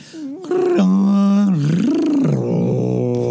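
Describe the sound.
A person imitates the mighty roar of an aging Wookiee: one loud, sustained, growly vocal howl lasting about three seconds, its pitch warbling up and down, with no other talk.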